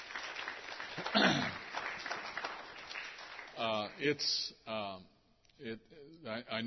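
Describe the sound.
A burst of audience applause for a woman who runs the online Sunday school, steady and moderately loud, fills the first few seconds, then fades as a man begins speaking.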